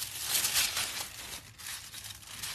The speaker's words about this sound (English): Oh well, let's try to just keep on putting more of this paper in here.